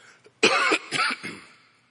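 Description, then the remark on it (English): A person getting over a cold coughs three times in quick succession, the first cough harsh and strongest and the following two trailing off, with no talking. “Y'all excuse me for coughing.”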